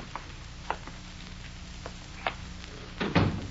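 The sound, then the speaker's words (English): A few light knocks and creaks, then a heavier thud near the end as a door is shut. No one speaks. “Quit drinking that stuff and close that door.”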